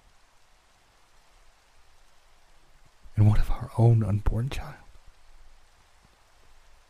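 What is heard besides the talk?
steady rain falling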